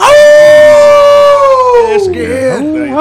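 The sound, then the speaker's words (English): A person loudly imitates a wolf howl: one long, sustained cry that slowly slides downward, then breaks into a couple of shorter wavering yips at the end. “Awu, awu.”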